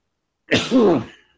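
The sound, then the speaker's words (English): A single loud sneeze: a sharp breathy burst that slides into a voiced, falling 'choo' and quickly fades. Nothing else is heard around it. “Hang on, I gotta sneeze.”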